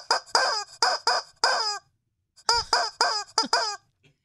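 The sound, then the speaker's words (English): A glow-in-the-dark squeeze-toy rubber chicken honks out the tune of Jingle Bells, its shrill, nasal squawks pumped in two quick rhythmic phrases with a short pause between, loud, with no voices. “Let me play this chicken.”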